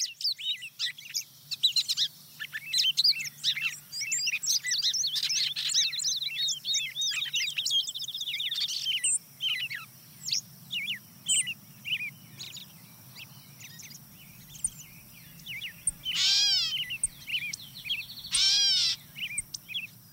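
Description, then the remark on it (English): A busy dawn chorus of songbirds, including a wood pewee, song sparrow and gray catbird, singing over one another with bright overlapping chirps, trills and whistled phrases, steady low background hum, no voices; the first half hour of the day compressed into 5 minutes. “Yeah, the wood peewee comes in, followed by the song sparrow and gray catbird. They start to pile on pretty quickly about this point.”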